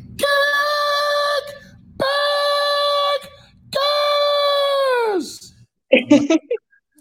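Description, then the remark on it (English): A person lets out three long, loud, high-pitched screams in a row, a patented 'kickbacker' scream, each held steady for over a second, the last sliding downward at the end, followed by a short vocal burst. “And I also want to do my patented kickbacker scream.”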